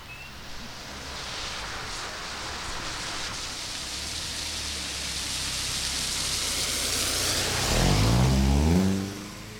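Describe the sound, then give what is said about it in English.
Rain patters steadily on a car windshield on a rainy spring evening at sunset in Keene, New Hampshire, at a steady 43 degrees, a dense, even hiss; near the end a low engine-like rumble swells briefly and then drops away. No one speaks. “It's a rainy spring night in Keene, New Hampshire, as the sun begins to set. Raindrops fall on my windshield, and it's a steady 43 degrees outside.”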